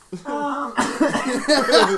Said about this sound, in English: Yeah, this cough is probably the most obnoxious fucking thing.